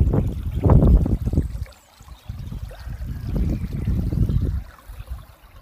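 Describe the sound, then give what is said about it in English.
Gurgling stream water rushing and splashing in uneven surges under stepping stones as someone crosses them on the Cleveland Way, dropping briefly quiet twice before picking up again. The stream joins the River Rye near Rievaulx Abbey. No voices are heard. “I'm just crossing the stepping stones now over the stream.”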